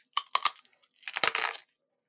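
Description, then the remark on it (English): Three sharp, hard cracks in quick succession, then a louder, rough crunching burst lasting about half a second as someone takes a raw bite out of a very hard, dry hardtack biscuit. No voices are heard. “I'm going to take a raw bite out of it, and then we'll go from there. This is my hardtack crunch.”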